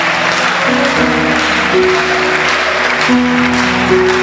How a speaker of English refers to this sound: Oh, keep clapping for them.